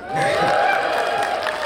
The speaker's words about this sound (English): Well, we have to cheer every time he tells us a result that was particularly noteworthy.